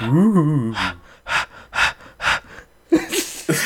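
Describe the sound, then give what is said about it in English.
A brief whiny vocal tone, then heavy panting: four or five loud, breathy huffs in a steady quick rhythm, ending in a couple of rougher gasps. A human voice imitates the panting. “Why are you panting?”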